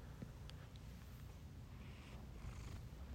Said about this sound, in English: Yeah. Sometimes he purrs and sometimes he doesn't. He knows when to purr. When he wants food. I've never heard a cat purr louder than this one.